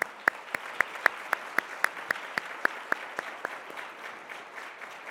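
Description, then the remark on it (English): An audience applauds the panelists at the end of a panel session for about five seconds: a dense wash of clapping with one set of sharp, evenly paced claps standing out, thinning slightly toward the end. No one speaks. “How about a big round of applause for our panelists?”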